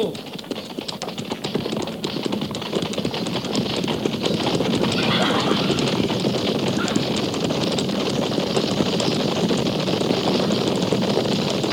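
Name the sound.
horses galloping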